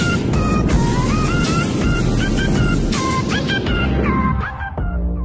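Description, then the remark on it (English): The Apollo 11 rocket launch at liftoff, 32 minutes past the hour, roars with a deep, continuous rumble, loud, while faint whistling tones drift above it; the roar thins out and tapers off near the end. “Liftoff. We have a liftoff. 32 minutes past the hour. Liftoff on Apollo 11.”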